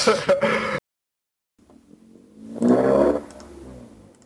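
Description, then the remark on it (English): A car engine revs up as someone shows off, its pitch climbing into a loud, roaring swell before easing off, following a brief burst of voices and a moment of silence. “No, but I'm in my car. Oh, okay. And like, there's there's someone showing off how big his dick is.”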